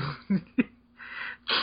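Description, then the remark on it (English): Someone blows their nose: two short snuffling bursts, then two longer, breathy, hissing blasts of air. The sound is fairly soft, with no talking. “Hold on a second, I gotta blow my nose.”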